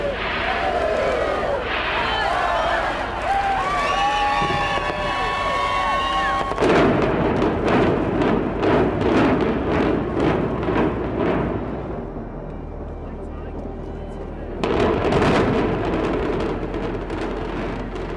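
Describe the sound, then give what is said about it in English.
The 2007 implosion of the Stardust casino building: after crowd voices and whistles, a rapid string of sharp demolition blasts cracks and rumbles for several seconds, eases off, then a final burst of booming noise erupts. “we'll go out with a bang, with audio of the Stardust implosion recorded by the Review Journal in 2007”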